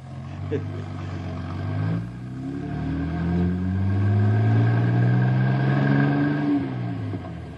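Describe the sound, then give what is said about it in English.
Heavy engines of two buses rumble and drone at low pitch as they head to a camp in a forest, steadily growing louder, their tones rising and shifting as they approach. “As soon as the buses get close to camp, all the animals in the forest will head for the hills.”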